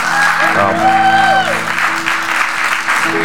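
An audience in a church breaks into sustained hand clapping, a dense, steady wash of applause filling the room, with sustained musical tones and some vocal sounds mixed underneath.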